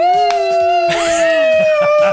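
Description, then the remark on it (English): A subdued human scream, held as one loud, steady-pitched cry for about two seconds, sagging slightly in pitch midway, with a few faint breathy bursts underneath. “Yeah, it's a subdued hysterectomy version of a scream, but I appreciate it nevertheless.”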